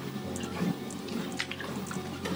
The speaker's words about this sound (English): No, no, no. Let's get some water into me.